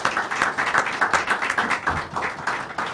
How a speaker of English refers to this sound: So if we give them a round of applause, because they were a great panel.